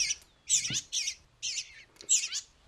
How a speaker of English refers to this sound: So these are two eastern bluebirds. Their parents were killed by house sparrows.